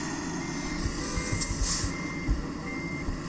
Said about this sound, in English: Horn. Fucking get out of my way.